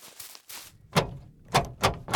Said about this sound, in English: Did he just lock the door? Joseph ran to the door and tried to push it open.